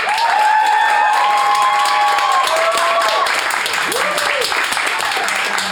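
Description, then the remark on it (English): A live audience bursts into steady, dense applause to vote for one side of a debate, staying loud throughout, with scattered whoops and cheering voices rising over the clapping. “our Flatshare Slamdown live audience”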